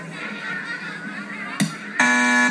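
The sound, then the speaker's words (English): A loud, harsh independent-thought alarm buzzer at a school suddenly blares near the end and holds a steady droning tone, following a short sharp click. Muffled, indistinct sound fills the moments before it. “Two independent thought alarms in one day.”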